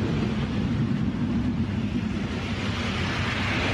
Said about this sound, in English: And there goes Electron for our 15th launch from Rocket Lab Launch Complex 1 in New Zealand.